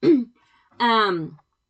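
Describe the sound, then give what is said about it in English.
A fairly loud throat clearing in two parts: a short rough rasp, a brief pause, then a longer voiced 'ahem'-like sound that drops in pitch before stopping. “The name of this podcast is really, really fitting for me, if anybody knows me, because I'm all the time coughing and clearing my throat.”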